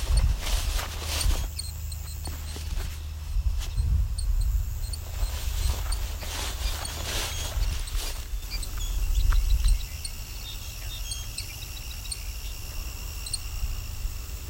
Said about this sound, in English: Seeing some Savannah sparrows up here. Not singing yet. I hear a lot of ticking, and that's Savannah sparrow. Very, very short tick. No, that's actually a song sparrow. This is a different call than I thought.